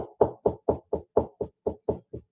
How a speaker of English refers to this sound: he kept on hearing this tap noise. Let me see if I can get it for you.